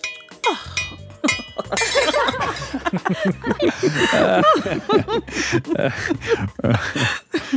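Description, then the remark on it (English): A glass of Pinot Noir is knocked to the ground at a bar with a bright clink and rattling impacts near the start, followed by scattered clinks as people laugh and chatter over it for several seconds. “You whirl around to face me as you gloat and accidentally knock your glass of Pinot Noir to the ground.”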